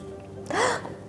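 A single sharp, dramatic intake of breath, close and fairly loud, rising quickly and fading within a fraction of a second against a quiet background with no talking.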